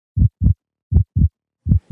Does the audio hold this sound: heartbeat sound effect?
yes